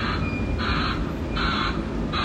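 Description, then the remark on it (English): An Amazon Prime delivery truck rumbles steadily while a harsh, buzzing electronic beep pulses on and off in a regular rhythm, three loud bursts over the low engine drone, with no talking. “I'm just gonna Amazon Prime truck running along,”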